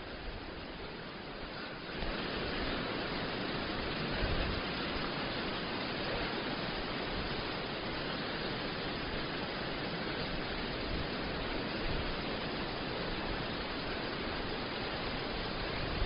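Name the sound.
wind blowing outdoors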